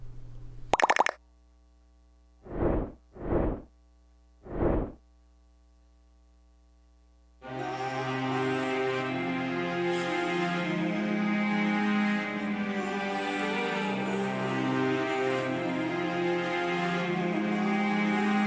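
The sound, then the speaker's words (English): The opening of a Palestine solidarity song: a sharp click and three soft, evenly spaced thumps over near silence, then at about seven seconds a full, loud musical arrangement kicks in and carries on steadily. “I'm going to play a little bit of a song. This is a sort of a Palestine solidarity song, if you will.”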